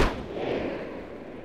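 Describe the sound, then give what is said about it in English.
A single shot from a scoped rifle, fired by a boy at grazing sheep about 50 feet from the speaker: one sharp, loud crack at the start, followed by a long, low rolling boom that slowly fades over the next second or so. No voices. “The uncle handed the boy a rifle with a scope, and the boy aimed and fired.”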